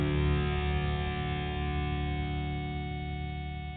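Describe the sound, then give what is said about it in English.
A distorted electric guitar chord rings out thick and buzzing, sustaining steadily and slowly fading over a few seconds, with no voices. “Right, a little bit of guitar distortion in the back.”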